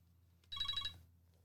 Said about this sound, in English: Did you hear that? That was not my cell phone going off in the middle. Is that a pager? Sounded like a pager.